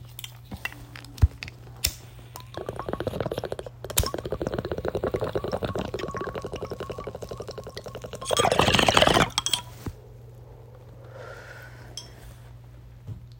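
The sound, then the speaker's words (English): Steady bubbling of water in a bong as someone takes a hit from a freshly packed bowl, a rapid gurgling rattle that runs for several seconds and swells into a louder rushing burst before stopping, with a few clinks around it. “Pack a rip with me, because we're in 30 fucking countries.”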